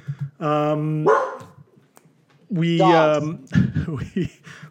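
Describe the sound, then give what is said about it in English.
A person imitates dogs barking with two loud, drawn-out woofing calls, separated by a short pause, and then a few quick voiced sounds like brief talk. “The dogs of Cleveland. Great sound effect, by the way.”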